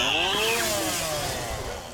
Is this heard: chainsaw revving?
yes